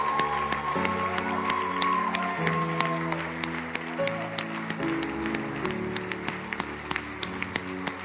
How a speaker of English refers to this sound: Come on. Let's cheer them on. Let's cheer them on. Come on. Let's cheer them on. Go ahead, team. Let's cheer them on. Come on.